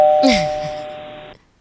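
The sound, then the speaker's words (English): A single electronic doorbell chime rings out clearly, its steady tone sustaining for about a second before cutting off abruptly. A brief muffled vocal noise sounds near the start. “Ding dong. Someone's at the door.”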